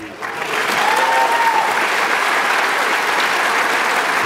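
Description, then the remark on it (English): An audience claps steadily and loudly for about four seconds, a dense, even wash of applause with a brief high whistle rising out of it near the start. “Don't applaud me, applaud my wife.”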